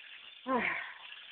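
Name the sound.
chicken sizzling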